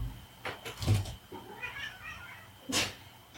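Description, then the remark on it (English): A pet cat meows insistently several times in a row, wanting the door opened, its cries rising and wavering, with a few soft thumps and no talking. “Go open the door. Maybe he should have been in the other category. My cat's wanting.”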